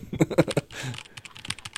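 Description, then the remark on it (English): Rapid typing on a computer keyboard, a quick burst of crisp key clicks with a few louder strikes at the start, then continuing in a fast, uneven patter. “Why the fuck are you hacker typing?”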